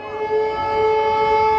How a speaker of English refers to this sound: This is something that happens several times a day. Very often they say the sirens are almost back to back.